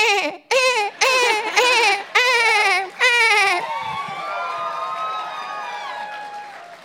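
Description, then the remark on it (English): A voice imitates a pregnant dolphin, into which a giant spider queen has turned: five quick, shrill squealing bursts in a row, then a longer wavering whistle-like squeal that slides and slowly fades. “I feel like you could probably do a good dolphin sound.”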